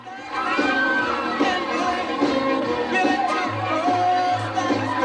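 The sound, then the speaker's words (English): A large wrestling crowd cheers and shouts continuously as the wrestler Stagger Lee comes out to the crowd dancing, a dense roar of many voices with higher children's yells poking through and steady loudness throughout. “Stagger's now coming out to the crowd, dancing around.”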